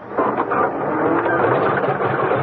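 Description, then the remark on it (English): A car engine cranks steadily for a couple of seconds with a grinding, mechanical whir and never catches. Fairly loud, with no voices over it. “Why doesn't this damn thing turn over?”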